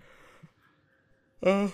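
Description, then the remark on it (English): A person yawns: after a stretch of near silence with soft breathing, a short, loud, voiced groan-like exhale rises and then breaks off abruptly. “Sorry, I yawned.”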